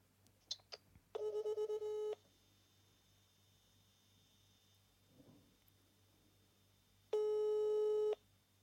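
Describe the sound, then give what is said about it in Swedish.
An outgoing call's ringing tone, a call to the speaker's father: two steady, buzzy one-second tones separated by a long silent gap, fairly loud, with a few small clicks just before the first tone. “Jag skickar och säger, vi ringer nu.”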